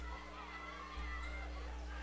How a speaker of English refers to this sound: Arcadia Valley High School tonight, absolutely packed crowd on hand, as you would expect.